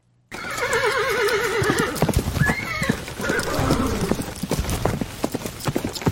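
A horse lets out a loud, wavering whinny near the start, followed by a steady run of clip-clopping hoofbeats, with a faint snort partway through.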